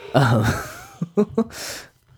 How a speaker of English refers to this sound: Sorry, ladies and gentlemen, I'm yawning like a motherfucker over here. I'm not even that tired.